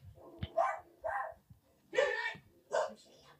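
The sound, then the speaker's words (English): A man's voice imitates a dog, letting out four loud, harsh barks in an uneven rhythm with short pauses between, with no other speech. “The one guy's just barking like a dog.”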